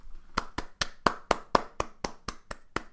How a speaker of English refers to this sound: I'm clapping for him.